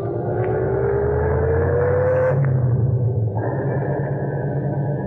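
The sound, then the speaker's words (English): A taxi's engine hums steadily as it drives north along the post road, a low continuous rumble with a rising whine as it accelerates and shifts, fairly loud with no talking. “We went north on the post road.”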